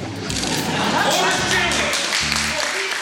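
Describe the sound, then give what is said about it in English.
A memorial audience bursts into applause, a dense, steady wash of many hands clapping for about three seconds, with low voices and cheering mixed in underneath. “The memorial erupts in applause.”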